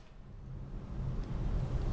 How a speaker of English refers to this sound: Hey, there's another one of those self-driving cars. You know, I see them more and more on the streets of Mountain View, and I have to say, I feel a little bit chary about this technology.